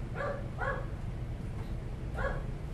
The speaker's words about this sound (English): Dogs are noisy.